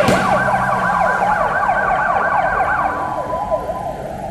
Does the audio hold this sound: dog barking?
no